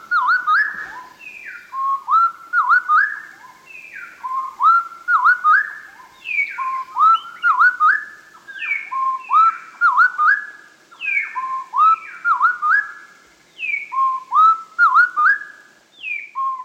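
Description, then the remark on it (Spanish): A tropical wren duet slowed to quarter speed, two voices trading drawn-out, sliding whistled notes in a steady repeating pattern, clear with no talking. “Bajemos la velocidad del canto a una cuarta parte. Así será más sencillo escuchar las dos voces separadas.”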